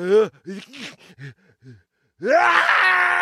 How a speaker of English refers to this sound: I'm going to push pause because I have to sneeze.